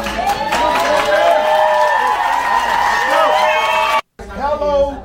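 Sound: audience cheering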